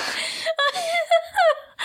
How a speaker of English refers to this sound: Oh, my God. I'm actually gasping like my asthma's really kicking in.